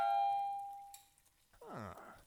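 A single bright doorbell chime at the front door rings out early in the morning and slowly fades over about a second, followed by a brief voiced sound that slides downward in pitch.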